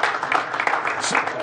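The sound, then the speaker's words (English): An audience claps steadily for a second and a half, a dense, even wash of many hands with a few voices mixed in beneath it. “Yeah, clap your hands.”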